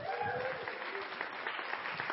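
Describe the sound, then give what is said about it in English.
An audience applauds steadily, a dense wash of many hands clapping at once, fairly loud and continuous for a couple of seconds, with faint voices mixed in beneath. “Yeah, because you weren't clapping for me because I didn't say that.”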